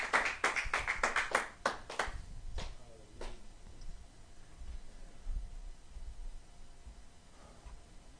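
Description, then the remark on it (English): An audience gives the Lord a clap, bursting into quick, loud, steady clapping for about two seconds, then a few scattered claps trail off, leaving a low murmur of background noise. “Y'all put your hands together and give the Lord a good clap off.”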